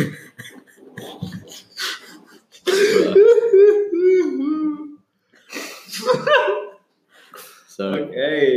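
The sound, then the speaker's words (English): Someone blows their nose with a loud, drawn-out honk lasting a couple of seconds, followed by shorter sniffly bursts, with quieter voices murmuring before and after. “We'll give … a minute to finish up blowing his nose.”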